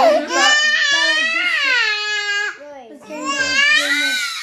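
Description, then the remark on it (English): A baby cries loudly in long, wavering, high-pitched wails, with a brief dip in the middle before the crying rises again, strained and insistent. “So as you can tell, we really have kids.”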